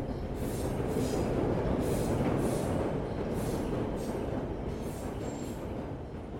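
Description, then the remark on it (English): A train rumbles steadily past, a dense low roar with faint rhythmic clatter and hiss from the wheels, like an underground tube train running through a tunnel, with no voices. “I often think of falling in front of tube trains.”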